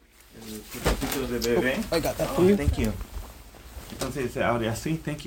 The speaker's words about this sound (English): Pet birds chirp in the cage in the corner.